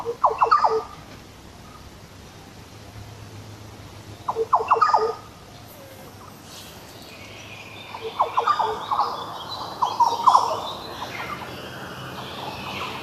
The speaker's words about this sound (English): It's a yellow oriole